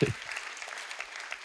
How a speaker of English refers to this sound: And yeah, you guys can clap. Someone came to Jesus, right?